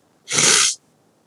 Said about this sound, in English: Sniff. My nose was sounding mad stuffy.